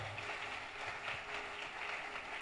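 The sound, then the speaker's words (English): An audience at a church conference claps for the Lord after a prayer, a dense, steady patter of many hands that holds at an even, moderate level throughout, with no voices over it. “Let's give the Lord another mighty clap.”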